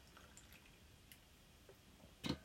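Quiet stretch with a few faint wet clicks, then a single short slurping sip of a drink near the end, a brief moist burst louder than everything before it.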